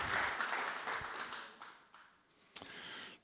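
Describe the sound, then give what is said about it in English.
An audience breaks into applause, a dense wash of many hands clapping that stays strong, then thins slightly before a few sharper claps stand out near the end. “Go ahead, give him a hand clap.”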